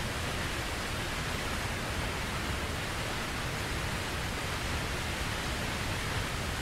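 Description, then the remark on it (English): A waterfall roars steadily as water falls about 50 feet over an edge and plunges into a pool, a dense, unbroken rush of falling water that fills the whole clip at an even, fairly loud level, with no voices or other sounds breaking through. “And we hear the strength of what appears to be a waterfall, where the water is falling from 50 feet high over the edge to, from some place that we don't know where it comes.”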